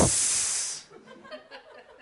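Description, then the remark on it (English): A person makes a loud, drawn-out hissing sound in imitation of a snake, lasting under a second, then it cuts off into quieter murmuring. “You know, there are things that are really bad in the desert, the wilderness. Okay, snakes.”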